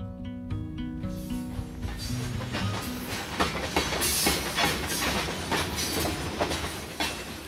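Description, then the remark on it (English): A long freight train loaded with coal rolls along the rails, opening with a sustained horn-like tone before steady clickety-clack wheel rhythms and metallic rumbling take over, loud, with no voices. “Long, slow trains of 100, 120 cars or more, each piled high with dull black coal.”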